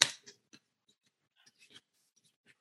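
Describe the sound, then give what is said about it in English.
Scissors snip through paper in a series of short, crisp cuts: one sharp snip up front, then several quieter, irregular clips and rustles, with no voices. “So you did the same thing with the scissors.”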